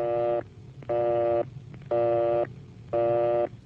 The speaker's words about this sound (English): If the line is busy, you'll hear this busy signal.